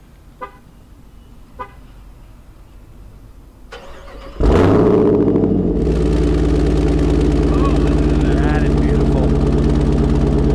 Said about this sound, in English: Ready? I'm going to do the remote start, so it's going to honk the horn for a second.